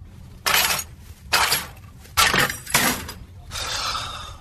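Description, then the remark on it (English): Car keys jangle in about five bright, metallic bursts with short pauses between, the last shake lasting longer and a little softer, in a TV commercial where a costumed character tries to grab his car keys. No one speaks. “Yeah, I isolated it in the second one so that you don't have the surrounding key jangling.”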